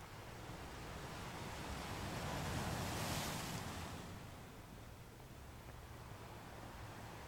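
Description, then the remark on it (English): Ocean surf rolls in steadily, swelling into a broad wash of a breaking wave around the middle before easing back to a continuous soft roar. No voices, just the sea. “Continue now to relax into the sounds and the smells of your oasis at the ocean.”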